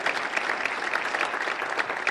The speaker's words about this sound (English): Right now, I want you to put your hands together and give a real good Lakeside welcome to our favorite Lakeside guest speaker